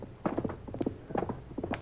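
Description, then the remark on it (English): A ridden chestnut horse approaching in the dark, its hooves clopping in a quick, uneven rhythm on hard ground, a steady run of sharp knocks at moderate loudness with no voices over them. “That's that chestnut horse he rides.”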